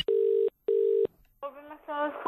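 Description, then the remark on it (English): A phone call to McDonald's goes through: two long, identical, steady buzzing telephone tones with a brief gap between them, then a voice answers and begins speaking. “Well, listen, I thought I'd put my detective hat on a bit earlier, and I called McDonald's, and I wanted to know if anyone fit that description who worked at McDonald's, and I gave them a bell.”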